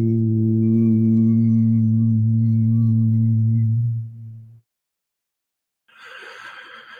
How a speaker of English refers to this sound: Get that resonate. Resonate your own body. Preaching all the time, vibrational healing is a real thing. And you can start that with yourself, with nothing. Just by meditating and humming.